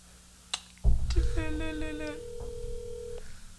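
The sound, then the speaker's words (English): A phone call rings out over a speakerphone: a couple of sharp clicks, then a steady electronic ringing tone that holds for about two seconds, slightly tinny and moderately loud. “I hope this isn't too loud for the audience, because this is just my phone on speaker.”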